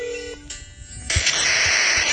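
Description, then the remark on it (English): A few short electronic phone tones beep over a faint hum as someone calls a phone, then a sudden burst of loud hissing static takes over and continues to the end. “How do I call you?”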